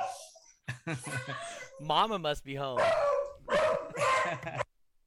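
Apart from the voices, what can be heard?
beagle barking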